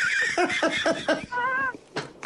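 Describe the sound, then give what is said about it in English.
A person imitates a cat, giving a few short, choppy vocal bursts and then a longer drawn-out meow, voiced fairly loud. “So what's going on? Meow. There you go.”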